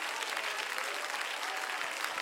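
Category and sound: crowd, audience clapping hands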